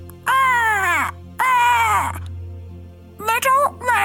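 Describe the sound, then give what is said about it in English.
A human voice imitates a crow, letting out two long, drawn-out cawing calls followed by a couple of shorter, choppier caws, loud with no other talking. “I think a crow actually flies out of the woods and sort of lands on top of this old man's head.”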